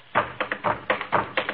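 Hands drum a steady beat on a wooden radio cabinet, used as a tom-tom for a rain dance: hollow knocks, about eight in quick succession, falling into a repeating strong-weak pattern, with no voices.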